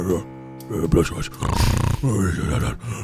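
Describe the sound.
A person voices a loud, rasping snore imitation for a character named Reginald, a couple of drawn-out guttural breaths, with no other sounds around it.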